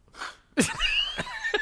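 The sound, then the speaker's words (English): A soft breathy buildup while humming with the mouth closed and the nose pinched, then a sudden loud burst of air forced out of the mouth, sputtering like a sneeze, followed by a few short breathy tails. “You can only hum for a certain amount and then it explodes your mouth.”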